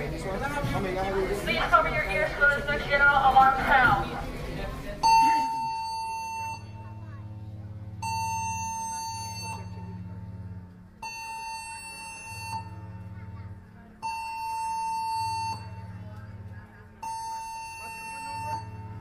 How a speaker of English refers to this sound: If you have small children or have sensitive hearing, you may want to cover your ears. At the completion of this announcement, the general alarm will be sounded. It's going to get loud.